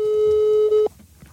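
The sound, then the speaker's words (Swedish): A steady electronic telephone ringback tone while placing a phone call, sounding loud for almost a second, a single sustained pitched beep with harmonics, then cutting off into faint background noise. “Vi ringer upp mamma och kollar.”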